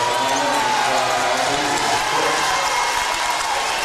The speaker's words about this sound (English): And the student section, everybody here rising and applauding.